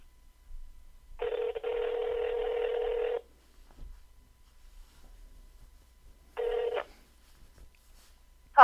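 Outgoing telephone call tones as a call is placed to a dog's owner: a steady electronic tone holds for about two seconds, falls silent for several seconds, then sounds again briefly, ending with a click as the line connects.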